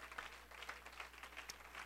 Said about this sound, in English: Praise God. Clap your hands and give the Lord one more praise before you're seated.